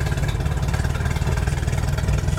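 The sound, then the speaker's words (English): A boat's bilge pump runs steadily, a loud, continuous low motorized hum with a droning rumble that holds constant throughout, with no voices. “Does turning on the boat empty the water? You must empty the water. It's the bilge.”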